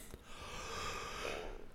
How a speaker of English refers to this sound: I'm yawning. Excuse me. Lord have mercy.